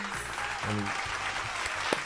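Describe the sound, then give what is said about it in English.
A crowd applauds steadily for a couple of seconds, a dense wash of clapping with a few low voice-like tones rising underneath and one sharp louder clap near the end. “Let's get a round of applause right quick.”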